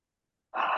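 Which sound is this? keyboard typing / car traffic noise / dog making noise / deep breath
deep breath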